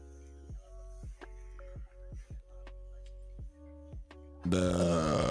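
A long nose burp, let out after sniffing in, that rumbles and stutters through several croaky pulses before ending in a louder, rougher blast. Nobody talks over it.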